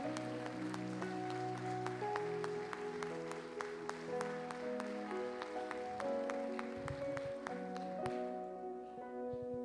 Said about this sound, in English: Come on, can you give Jesus a hand clap of praise in the house today?